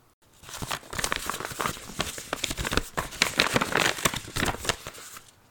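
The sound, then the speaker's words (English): Paper wrapping on parcels crinkles and rustles steadily for several seconds as they are opened, with dense, crackly bursts and a few sharper tearing sounds, fairly loud, with no voices. “Millie and Molly opened their parcels in a flurry of paper and birds and excitement.”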